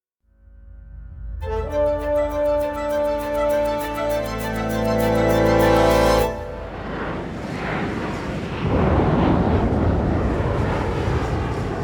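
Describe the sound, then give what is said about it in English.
A loud, droning engine hum of a Boeing 727 passenger plane in flight over Washington State, with rapid rattling pulses, gives way to a roaring rush of wind and thunderstorm noise as hailstones pelt the cockpit window and thunderclaps make the aircraft shudder and lurch. “Outside, a storm rages. Hailstones pelt the cockpit window. Thunderclaps make the aircraft shudder and lurch.”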